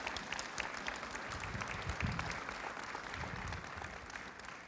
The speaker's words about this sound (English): if we could have the children, just any children here tonight, if we could just have them come here down to the down here for a little children's blessing, that would be great. Let's give them an applause. Encourage them.